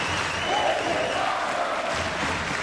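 A steady round of applause with crowd cheering, a dense wash of clapping that holds at an even, fairly loud level for a few seconds with no clear speech over it.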